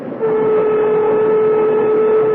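A loud, steady passenger train horn blares without pause over the rushing rumble of the moving train, holding one sustained tone for a couple of seconds.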